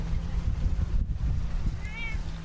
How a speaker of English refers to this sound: We pull up in his boat to find someone waiting for us.